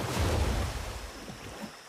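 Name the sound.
river water flowing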